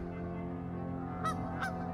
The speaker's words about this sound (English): I hear them calling, and it just is the wildest, most gorgeous sound. As the first waves of geese move over me and I heard them honking, it just took me, I felt like I was a little boy again, looking up at the geese for the very first time.